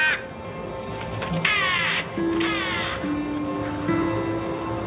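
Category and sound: bird, crow cawing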